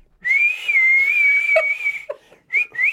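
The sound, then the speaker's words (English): A person whistles as loudly as possible as a chest-muscle exercise: a loud, sustained high note for nearly two seconds, wavering slightly, then breaks off and whistles two more short bursts, unaccompanied by talk. “Throw your chest forward, lift your head up, and then try to whistle as loudly as possible.”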